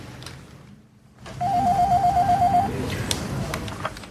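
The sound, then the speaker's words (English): A telephone in an office rings with a rapid, warbling electronic trill lasting just over a second, followed by a few soft clicks and handling noises as a man picks up the phone to call his secretary, against a steady background hum. “He's picking up the phone, calling his secretary.”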